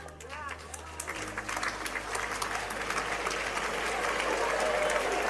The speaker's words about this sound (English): Parents are applauding. Graduates are not.